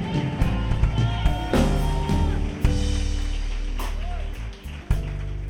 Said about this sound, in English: Give our new sister a big hand clap. Give Jesus one more great big hand clap.